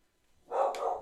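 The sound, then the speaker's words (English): A female dog lets out a single short, clear bark with a brief yelping edge, after a moment of near silence. No one speaks. “Oh, there's a dog in there.”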